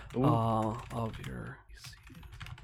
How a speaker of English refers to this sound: And I'm just quickly typing in the question.